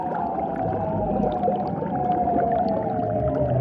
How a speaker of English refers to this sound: The lady seals apparently couldn't get enough of these eerie sounds, which is why they evolved into such long, elaborate displays. And to add to that display, they're also swimming around in circles and blowing bubbles.